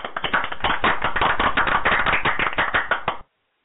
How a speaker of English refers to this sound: Wow, man, we had to give you the applause on that one, man.